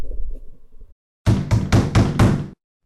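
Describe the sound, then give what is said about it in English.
Five loud, firm knocks on the door of a house in quick, slightly uneven succession, following a brief low rumble and a moment of silence. “They've found a dead body and somebody knocks on the door.”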